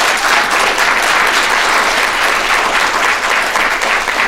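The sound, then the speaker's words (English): An audience claps for Jeff Prescott in a loud, steady round of applause, a dense wash of many hands that holds at an even level for several seconds with no voices over it. “Jeffrey, everybody, a warm round of applause for Jeff Prescott.”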